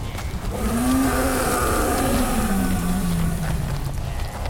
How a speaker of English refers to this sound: However, as they began their ascent, a ghastly howl contested the thunder's clamor from above.